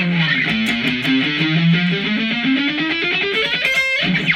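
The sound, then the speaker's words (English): A distorted electric guitar plays a rapid, evenly picked warm-up run whose notes climb steadily in pitch before dropping back. It is loud, with no talking. “I'd suggest you do it off distortion, because it could get sloppy.”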